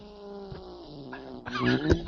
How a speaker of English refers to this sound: Did you hear that? Yeah, okay. That's my favorite startup sound. Yeah. That's the Jaguar startup sound as done by my mom's cat.